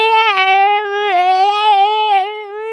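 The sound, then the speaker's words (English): A person imitates the pained yowl of a cat being swung round a room by its tail, holding one loud, steady, nasal wail for nearly three seconds with slight wavering pitch and no words. “You know when you get a cat and swing it round the room by the tail? And it goes.”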